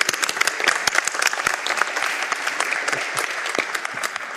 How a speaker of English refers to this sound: All right, give him a round of applause, folks.